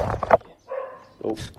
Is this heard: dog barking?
yes